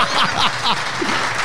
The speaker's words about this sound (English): Well, here we are at our first ever international Behind the Glass Live. Everyone in the room, give yourself a round of applause. Yeah!